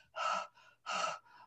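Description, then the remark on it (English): A person imitates heavy breathing as during exercise: two loud, breathy inhales each followed by a shorter, softer exhale in a quick, steady rhythm, with no talking. “It's like if you exercise, you go, that's a different kind of breath as opposed to arousal.”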